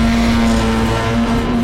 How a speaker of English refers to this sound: Cargo train, looks like. No passenger seats, just storage cars.